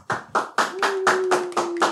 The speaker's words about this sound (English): Let me hit you with the proper clap. Let me hit you with the proper clap. Thank you very much.